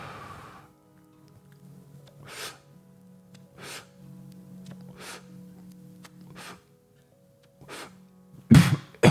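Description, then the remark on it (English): A series of rough, raspy bursts repeats at a steady pace, like strained breaths or hacking, before breaking into a loud, harsh coughing fit right at the end. “Oh, that was an ugly cough.”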